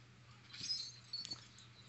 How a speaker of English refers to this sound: I hear some fast clicking of editing, I bet.